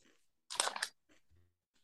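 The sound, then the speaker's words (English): Crisp crunching of a Butterfinger candy bar being chewed, one loud burst of crackly bites followed by a few softer chews, with no talking. “I haven't had a Butterfinger in so long. I probably enjoy it more than I act like I would, but not bad.”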